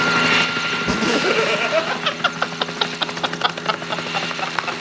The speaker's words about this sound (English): He came in on a helicopter, man. That's how he rolled in, man.